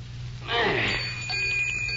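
A small bell rings once with a bright, high jingle that lingers and fades slowly, on its own with no talking.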